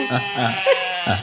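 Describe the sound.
A woman's voice imitates a sheep, giving three wavering, nasal bleats in quick succession, fairly loud, with no other talking around them.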